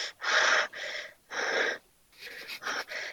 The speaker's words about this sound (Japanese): 息切れしてる。